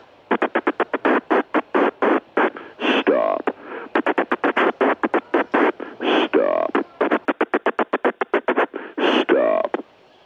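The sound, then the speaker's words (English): Rapid popping fart sounds tap out a Morse-like rhythm of short bursts broken by a few longer, drawn-out blasts, the pattern repeating three times with no talking. “Did you just do a Morse code popcorn, silent popcorn fart?”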